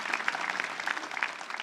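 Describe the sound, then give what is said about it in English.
Steady applause from a church audience giving God a clap offering, a dense patter of many hands clapping with no single beat, fairly soft and even throughout with no voices. “Let's give God a good clap offering.”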